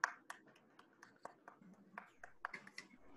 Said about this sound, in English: So even before I start, seeing all that is going on and all what you have achieved and still stayed ahead of COVID and everything, why don't all of you give a big round of applause to yourself?